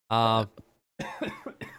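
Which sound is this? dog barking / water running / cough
cough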